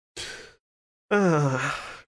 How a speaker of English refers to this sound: and my cat will not shut the hell up. Yay. Just in the background. Meow, meow, meow.